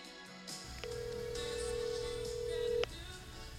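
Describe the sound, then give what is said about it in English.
A phone call being placed to a woman: a brief beep, then a steady electronic ringing tone that holds for about two seconds before cutting off with a click, over a low background hum. “I'm going to call her right now.”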